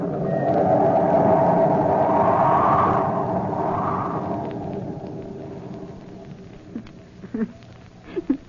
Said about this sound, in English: The wind was screaming through the sails like an insane witch on a broomstick